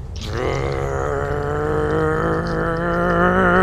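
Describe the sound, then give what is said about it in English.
A voice imitates a truck engine revving out of control because its accelerator got stuck, a loud, sustained droning growl that holds steady and creeps slightly higher in pitch for a few seconds. “My truck started going like uncontrollably accelerating.”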